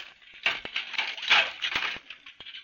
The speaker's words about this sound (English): You recognize that sound? Well, it's Mrs. Brown washing up the dinner dishes.